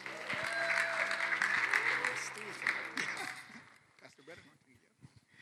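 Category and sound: crowd, audience applauding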